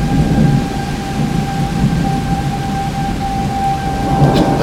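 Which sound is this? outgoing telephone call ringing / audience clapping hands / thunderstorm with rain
thunderstorm with rain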